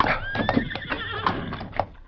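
A horse gives a loud, quavering whinny that wavers for about two seconds, with a few sharp hoof clops sounding beneath it, near the base of Crag Rock. No one speaks.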